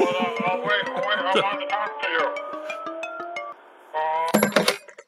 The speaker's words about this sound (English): Oh, wait. Oh, my God. This is really embarrassing, George Lucas. My phone's ringing. I recognize that ringtone.